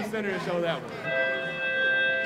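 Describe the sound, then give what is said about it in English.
Students chatter briefly, then a school bell starts ringing, a steady sustained ring that continues to the end with faint talk underneath. “Soon, though, the bell rings”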